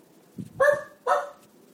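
A dog, the show's dog named Audible, barks twice in quick succession, two short, fairly loud barks with a brief pause between them and no talking around them.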